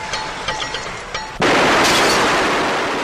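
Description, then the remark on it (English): A few sharp cracks ring out, then a sudden, deafening roar of gunfire erupts and keeps blasting without a pause, loud and continuous until the end, as a gunman on a tower fires on a waiter at a beachside lunch table. “Childress steps away to say goodbye to Robin, and when the waiter returns to Peter's table, he is suddenly perforated with deafening gunfire.”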